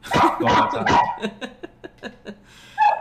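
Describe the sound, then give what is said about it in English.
Dogs out on a late-night walk bark in a quick burst of loud, overlapping yaps, then a run of shorter, quieter barks and yips, ending with one more sharp bark. “Hello, puppies. Making their debut.”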